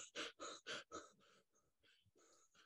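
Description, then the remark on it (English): A person demonstrates rapid, shallow anxious breathing, with four loud, quick breaths in the first second, then softer, uneven huffs trailing off. It is breathy, with no talking. “And if you breathe slow, you can't have anxiety, because when you have anxiety, you breathe like this.”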